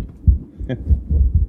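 A deep, muffled heartbeat sound effect thumps several times in a steady, low pulse, fairly loud, with a short ringing tone flickering briefly between beats.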